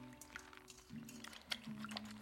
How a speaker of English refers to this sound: So now that our oregano is in the bath, I like to just take my hands in it and just kind of tear it apart some more. See, I'm like just grabbing some of the herbs.